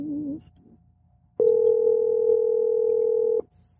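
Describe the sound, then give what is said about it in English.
A single steady ringback tone of an outgoing phone call, lasting about two seconds, clear, following a brief burst of muffled voice and then quiet. “I thought he was going to answer the phone.”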